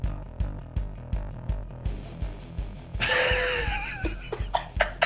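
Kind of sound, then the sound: animal, dog snoring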